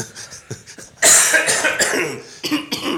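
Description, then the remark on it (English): A loud, chesty cough from a person just out of a really bad chest infection: several short rough hacks, then one long harsh fit followed by two quicker coughs, with no talking. “And no matter how much time we spend, if you're going to cough like that, we're going to...”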